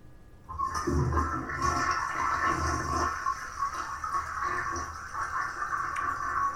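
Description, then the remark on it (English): A toilet flushes, a loud rushing surge of water that swirls steadily for several seconds without fading, with no voices over it. “So let's flush down Alabama.”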